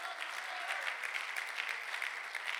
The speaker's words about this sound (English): Clap your hands for a moment if you believe that today, and just shout and say, I know God's got my back.